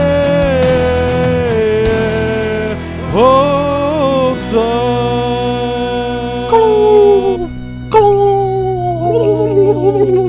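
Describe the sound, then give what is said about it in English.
A turkey gobbles loudly several times, each bursting, warbling call sliding downward in pitch over a steady background, with no talking. “That's the official Thanksgiving turkey, letting y'all know it's Thanksgiving season on Plane Zero”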